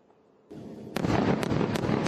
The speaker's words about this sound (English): The southern front remains active, and I do want to show you what it was like last night as those airstrikes targeted the northern part of Gaza. Take a look.